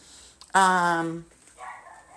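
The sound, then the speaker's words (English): A female dog barks: one loud, drawn-out bark with a strong tonal ring, followed moments later by a softer, shorter vocal sound. “Now she's barking up a storm.”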